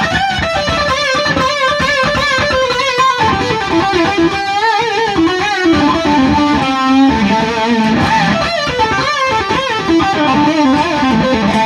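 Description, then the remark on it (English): A loud, distorted electric guitar plays a fluid lead lick full of string bends, notes sliding up and down in pitch, sustained and continuous with no talking. “you're quite good at your … the style bending lick”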